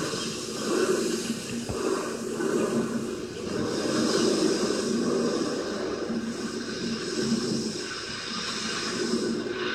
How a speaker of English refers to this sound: I know it's weird that all those shower heads are like going crazy right now, but that's a shower that I could probably get into as long as the water is the right temperature.